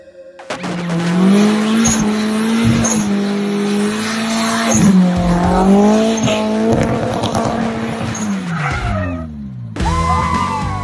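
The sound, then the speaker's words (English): A 1995 Nissan 240SX's engine roars at sustained high revs while its tires squeal continuously, the pitch wavering as it does donuts at a wedding, loud for about nine seconds before a brief cut. “That's his 1995 Nissan 240SX ripping some mad wedding donuts.”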